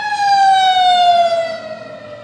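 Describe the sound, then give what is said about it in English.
A loud emergency vehicle siren wails, its tone sliding steadily downward as it passes and begins to fade, with no voices present. “This is stalking with sirens.”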